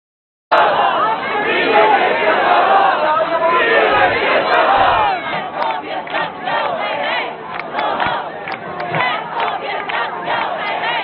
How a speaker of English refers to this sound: They're shouting transphobia has got to go, hey, hey, and all that stuff.